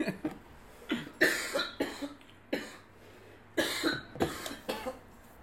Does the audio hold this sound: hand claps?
no